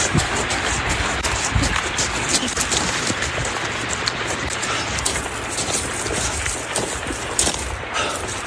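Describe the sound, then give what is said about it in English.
A massive rock slide rumbles in a steady, loud roar with a deep low-end drone, while a woman's quick running footsteps patter over gravel for the whole stretch. “hearing her running in the gravel, but that like noise in the background is what she was just describing at the beginning of the video, talking about rock slides.”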